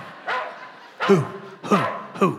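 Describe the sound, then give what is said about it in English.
A dog barks four times in a steady, evenly spaced rhythm, part of a song being played. The barks are fairly loud and slightly muffled, with a faint continuous background hum between them. “The dogs may bark, but the train keeps moving. …?”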